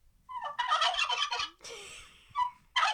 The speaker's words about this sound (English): But anyways, gobble.